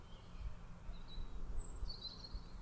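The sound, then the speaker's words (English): Faint, thin high-pitched sparrow finch calls, a few short chirps and a brief trill over a low outdoor rumble of wind, by a field as it looks like rain. “I think I can hear the call of the sparrow finch.”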